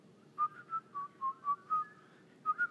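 A short whistled tune, about eight clear pitched notes in a bouncy rhythm with a brief pause before the last two, over a low murmur of a room full of people.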